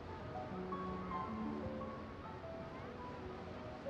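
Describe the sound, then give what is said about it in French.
A steady wash of ocean surf on a summer holiday beach on the Atlantic coast, a continuous broad rush with no distinct breaking crashes, with faint tonal sounds drifting in the background. “Le soleil des mois d'été, le beau sable et la mer attirent toujours des centaines de vacanciers sur cette plage de la côte atlantique.”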